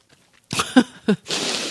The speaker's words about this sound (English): For all those listeners who hate it when we make a lot of mouth noises, you try eating a Snickers bar without making a lot of noise. I hear it.